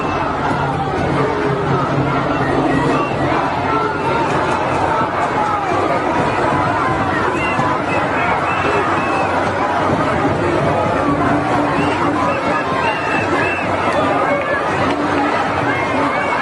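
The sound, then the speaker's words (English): A large protest crowd in London roars with many overlapping voices, chanting "to the river, to the sea": a dense, steady wall of loud group chanting and shouting that continues without pause from start to finish. “All chanting to the river, to the sea, right?”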